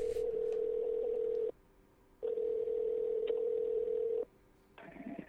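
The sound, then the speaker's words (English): A steady, buzzing telephone tone sounds in two long bursts of about two seconds each, separated by short silences, as a phone call is placed from OU Radio, then a different line noise starts at the end. No one speaks. “Oh, we're making a phone call.”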